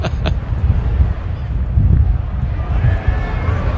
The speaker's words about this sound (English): You know, every time I've mentioned the wind, that has kicked up over there. Listen to him. He's like it's rumbling.